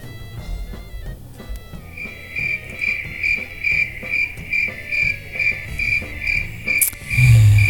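Crickets chirp in a steady, rhythmic pulse, a bright trill repeating about twice a second, fairly loud, with no talking; a low thump lands near the end.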